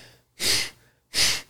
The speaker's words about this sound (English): Go through this process. It starts with a breathing exercise. It's like...